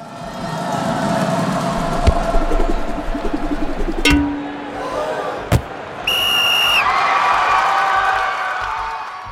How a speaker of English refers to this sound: And on to kick the extra point is our engineer, Nick Patry. Nick, can we get a kicking a football sound followed by some cheering right here?